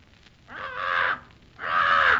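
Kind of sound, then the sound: bird, parrot squawking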